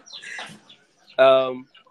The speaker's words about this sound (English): Sorry, man. There are chickens around this area.